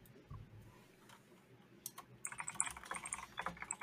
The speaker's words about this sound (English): Insert typing here.